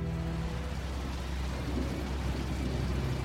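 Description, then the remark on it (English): Steady rain pattering against the windows of a plane with a deep, continuous rumble of thunder underneath, a dense and constant storm wash with no voices. “The rain against the windows has increased.”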